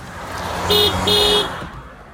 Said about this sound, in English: Hey. I'm going to give you two honks for your birthday.